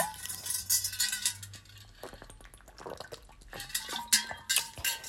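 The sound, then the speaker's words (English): Sounds of someone taking a drink of water: wet sips and swallows with small clicks and light knocks of a container, no talking, over about five seconds. “But either way, hey, water break.”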